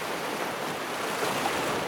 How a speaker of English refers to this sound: Alone he rowed his little boat, alone as he always did, so alone that he did not know anymore just how lonely he was. The steady sound of his oars in the water matched the steady beat of his heavy heart.